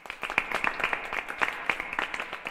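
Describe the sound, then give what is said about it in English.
Thin, scattered applause from a small crowd at a town talent show after a band's performance, irregular claps popping unevenly rather than building into a full ovation, fairly quiet, with no one speaking. “The applause was pitiful.”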